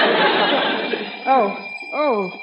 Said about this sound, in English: Okay, alarm clock. Oh, you win. Quiet.